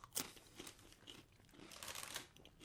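Crunching of crisp air-popped vegetable pizza-style Viva chips being bitten and chewed, a sharp loud crack at the start followed by a steady series of crackly crunches, with no talking.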